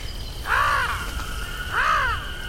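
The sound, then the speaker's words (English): Two loud, harsh caws from a large, bright purple crow-like bird about the size of a Labrador, spaced about a second apart, with steady low background rumble and no talking. “Kind of like if a crow was the size of a Labrador.”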